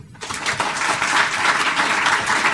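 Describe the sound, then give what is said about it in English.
A crowd applauds the Washington, D.C. team, many hands clapping in a dense, sustained wash that starts abruptly and holds at an even, fairly loud level throughout. “All right, let's give the Washington, D.C. team one more round of applause.”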